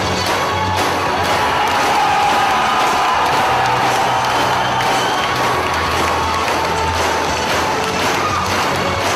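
A loud crowd roars and whoops while Ring of Honor wrestling fans pound on metal guardrails as a wrestler comes out, producing a steady, continuous stream of sharp banging hits that runs underneath the cheering.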